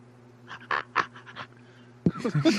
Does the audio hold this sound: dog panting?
yes